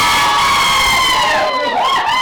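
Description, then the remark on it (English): A loud crowd roars and cheers together after a goal for Leitrim Gaels, a sustained wall of high-pitched shouting and whooping from many voices close by, swelling briefly before continuing. “We don't even need to announce that she scored a goal now. The crowd will do it for us here beside us.”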